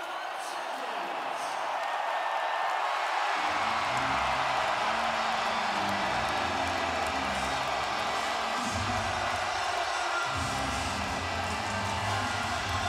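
A hockey arena crowd cheers in a loud, sustained roar after Evander Kane scores into the empty net with 10 seconds left in game four, Edmonton Oilers against Calgary. The roar holds steady for the whole stretch, a dense wash of voices without a break or clear rhythm.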